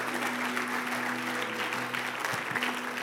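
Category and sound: crowd, audience clapping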